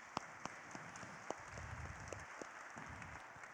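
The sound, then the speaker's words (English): A church audience applauds in appreciation of the altar guild: a steady, dense patter of many hands clapping together, with a few sharper individual claps standing out, fairly soft overall and with no voices. “Would you give them a round of applause of appreciation for all they do?”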